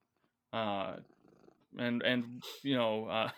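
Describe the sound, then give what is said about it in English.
A cat named Sansa purrs loudly, the rumbling sound coming in three strong bursts with a softer, quieter stretch of purring between the first two. “Is that a cat purring?”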